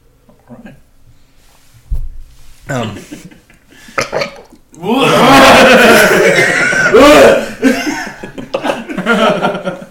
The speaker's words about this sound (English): That was the wettest burp ever.